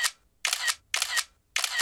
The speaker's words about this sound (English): Screener held his tablet screen over the landscape below and snapped a few photos.